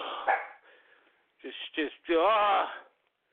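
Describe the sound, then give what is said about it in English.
A dog barks twice in quick succession, then lets out a longer, wavering bark-howl. The sound is somewhat muffled, with a brief rustle before it. “Goddamn dogs, man.”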